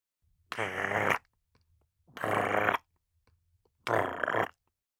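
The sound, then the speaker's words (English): A toad croaks three times, each croak a loud, rasping, low buzzy call lasting about half a second, separated by short, evenly spaced pauses with no other sound. “Toad observing.”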